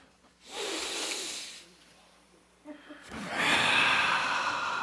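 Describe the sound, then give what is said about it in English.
Two long, forceful breaths in a breathing exercise: a deep rushing inhale, a brief pause with a faint vocal murmur, then a louder, breathy hissing exhale. “Breathing should be like that. Let's do it together.”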